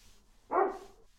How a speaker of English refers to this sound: Another bark preceded a whine.